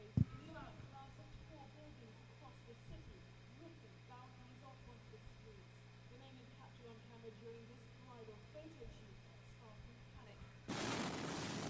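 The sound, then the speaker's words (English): An explosion, felt more than 150 miles away and registered on US seismographs, erupts near the end as a sudden, loud wall of roaring noise that keeps going, after a stretch of quiet background voices and a steady low hum. “And then the explosion. I'm going to share a small video with you guys, and then we could talk about it.”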